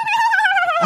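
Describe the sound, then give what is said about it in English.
A voice does a brief, high-pitched, wavering whinny like a horse, one short nasal burst under a second long, fairly loud with no other talking. “The horse, the random horse.”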